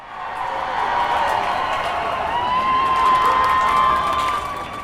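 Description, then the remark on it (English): A large crowd cheers and chants together in a steady, sustained roar of many voices, holding its loudness throughout with a few higher voices standing out midway and no clear words. “Wisu scans the faces in the crowd as all chant with renewed excitement and passion”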